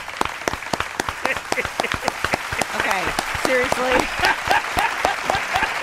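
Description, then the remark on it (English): An audience breaks into a big round of applause for the show's sponsor, Fremont Bank. Dense, rapid clapping is sustained throughout, with voices talking over it and a few cheers rising in the second half. “Fremont Bank, you're getting a big round of applause today.”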